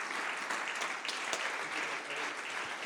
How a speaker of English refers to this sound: And today, can we stand and give them honor, a hand clap, and thank God for them today?